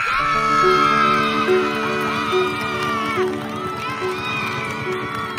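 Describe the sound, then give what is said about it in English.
A large crowd at a game cheers and screams wildly after a shot goes in, many overlapping shrieking voices sustained at a loud, steady roar from start to finish, with a few sharper yells rising above the din. “The crowd goes wild.”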